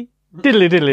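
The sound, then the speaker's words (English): After a brief silence, a loud voice hums a quick, bouncy tune in nonsense syllables, imitating jaunty piano music for under a second. “Cue the piano music.”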